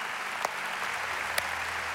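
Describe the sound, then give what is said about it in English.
A church audience claps for Jesus steadily in a dense, even wash of applause, with a couple of sharper individual claps standing out above the continuous patter. “Come on, let's clap our hands for Jesus.”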